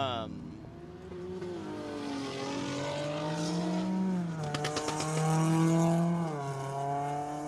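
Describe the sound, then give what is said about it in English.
Loud car engines of an Infiniti Q50 with a VQ engine and a Corolla hatchback rev, their pitch climbing and dropping as they shift gears and pass, with a throaty exhaust drone running throughout. “So that was an Infiniti Q50, which with a VQ engine.”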